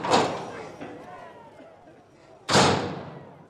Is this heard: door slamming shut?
yes